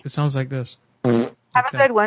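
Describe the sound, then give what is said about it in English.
A person speaks briefly, then blows a single short, buzzy mouth-fart imitation of a queef lasting about a third of a second, fairly loud, followed by more talking. “You know what a pussy fart is? A queef?”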